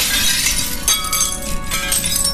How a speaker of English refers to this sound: it shattered right between the maiden's feet and the earth. Shards rained inside, singing brightly, followed by a majestic falcon.